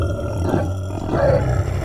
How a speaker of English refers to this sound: Pigs, like all animals, they sometimes fight, but they also make up.